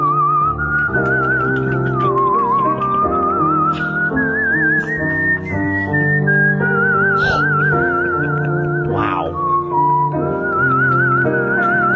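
A steady, high whistled melody with a wavering vibrato glides through slow phrases over a full instrumental backing of sustained chords and bass, with no talking throughout.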